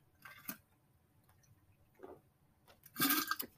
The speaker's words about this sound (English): Sorry, I needed a drink of water there. And if you heard, my water is empty now, which is not a good thing.